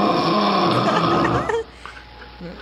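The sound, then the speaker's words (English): A voice imitates another person's loud, raspy snore, one long rattling snort lasting about a second and a half, then it drops off into near quiet. “You snore like a real loud dog.”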